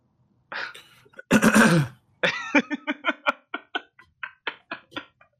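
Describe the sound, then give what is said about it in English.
Someone clears their throat loudly and theatrically, with a couple of harsh rasping bursts followed by a rapid string of short, voiced grunting pulses. “I like how exaggerated you like clear your throat.”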